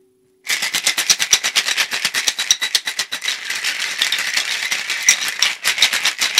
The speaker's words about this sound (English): All right, I'm gonna shake this up and then add it to my glass and then add Fresca.